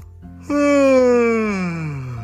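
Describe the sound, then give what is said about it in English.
A single big, drawn-out yawn of someone waking up in the morning, loud, its voiced pitch sliding slowly downward for about two seconds with no words spoken. “Had a big yawn and went downstairs to eat some breakfast.”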